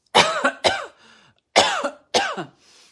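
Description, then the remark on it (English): A dog named Lulu snoring loudly in harsh, raspy snorts, two quick pairs of rough inhales each trailing off into a faint wheezy breath, with no voices. “Can you hear her snoring up a storm?”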